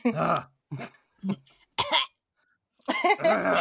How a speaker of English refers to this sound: Clear my throat.